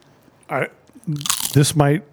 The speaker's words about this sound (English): Nice crunch.